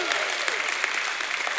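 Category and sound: crowd, audience hand clapping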